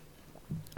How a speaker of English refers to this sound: Wait, let me get a little sip of this drink here. What drink? What are you drinking?